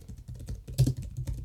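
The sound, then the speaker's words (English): Rapid, uneven clicking of keys on a computer keyboard as someone searches Google, fairly quiet, with a slightly louder burst of keystrokes partway through and no voices. “You can probably hear my typing as I podcast.”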